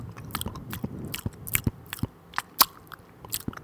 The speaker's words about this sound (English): Jeez, my mouth's dehydrated. I'm going to be slapping my lips like an old man. Like an old man sucking a little toffee, looking at some young fellas running around the field.